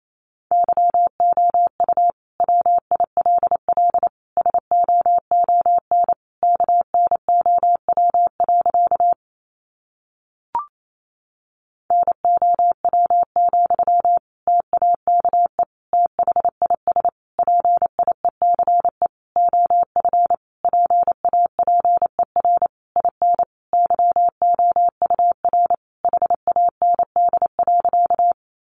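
Morse code at 28 words per minute: a single steady mid-pitched beep keyed on and off in rapid dots and dashes, interrupted by one short pause partway through, with no voices.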